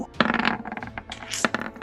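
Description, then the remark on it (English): Dice clatter and tumble across a hard tabletop as they are rolled in a game, a quick run of sharp clicks and rattles lasting under two seconds, with no voices. “Let's roll that up. First one against Devasho.”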